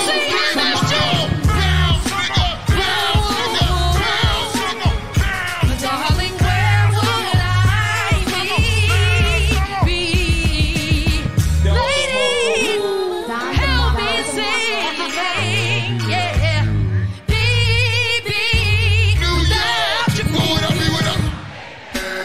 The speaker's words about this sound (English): Damn, you can hear the crowd on that too.